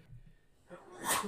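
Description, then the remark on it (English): A single sharp sneeze bursts out near the end, preceded by a quick intake of breath, moderately loud against quiet room tone. “Bless you.”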